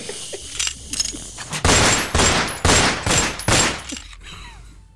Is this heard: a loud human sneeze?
no